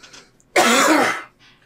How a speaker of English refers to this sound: So my mom used to tell me. If you're out there listening to the podcast, do any of your moms ever tell you when you're coughing to put your hands up?